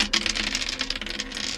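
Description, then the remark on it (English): A quick burst of dense, rapid clicking and rattling as three dice are rolled, clattering and tumbling across a hard surface, fairly loud, with no voices. “Go ahead and give me another hack roll. Okay, this time I can use my 3 dice.”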